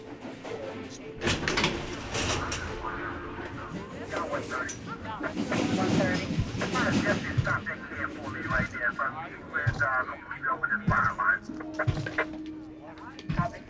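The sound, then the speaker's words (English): A subway train rumbles steadily along the rails with metallic clatter, rattling and occasional high squeals, fairly loud, while indistinct voices murmur beneath the noise. “After more than a year, riding the subway for the first time was a nerve-wracking experience.”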